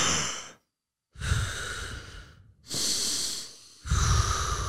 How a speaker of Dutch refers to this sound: En ik ademde mijn hele leven ook verkeerd. Dat was diepe ademhaling, deed ik zo. Dan ging mijn buik in.